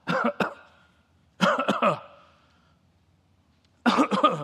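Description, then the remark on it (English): Three separate bursts of harsh, hacking coughing, each a quick cluster of rough barks with short pauses of quiet between them, fairly loud, with no talking. “The word is used of a hacking cough.”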